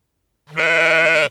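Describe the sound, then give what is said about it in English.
A single drawn-out bleat from a very small sheep, small enough to pick up by hand, fairly loud, with a steady wavering tone lasting under a second before cutting off cleanly. No talking around it. “And there it was, a sheep. A very small sheep, so small he could have picked it up with his hands.”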